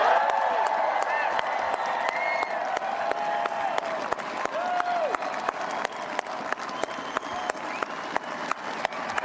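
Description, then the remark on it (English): Sustained standing ovation from a large crowd at the inauguration of Virginia Lieutenant Governor Winsome Earl Sears, a dense steady roar of clapping with sharp individual claps standing out, and a few voices and cheers rising through it throughout. “I'm just going to, I love the crowd giving a standing ovation to the first statewide elected African-American woman in Virginia's history.”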